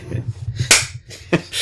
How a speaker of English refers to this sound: slaps you across the face. Snap out of it.